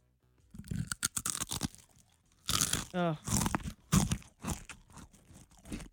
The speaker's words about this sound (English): My son does this thing where he'll take one Cheez-It and he'll bite it 6,000 or 7,000 times